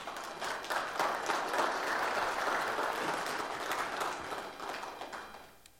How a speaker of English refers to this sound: But it gives me great joy right now to say that we've met all of our missionary ministry obligations for the year of 2017. And I think that's worth an applause.